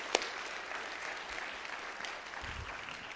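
An audience claps steadily for a few seconds, a dense wash of many overlapping hand claps at an even, moderate loudness, with no one speaking.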